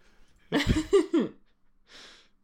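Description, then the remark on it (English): A single loud, voiced sneeze bursts out with a rising and falling tone, followed after a short pause by a soft breathy sniff. “God bless you, ….”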